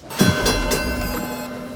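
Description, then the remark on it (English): A robot trolley rolls along rails with a steady, sustained rumble and metallic whine, a few faint clanks near the start, continuous throughout. “I knew that trolley was awfully robot-y.”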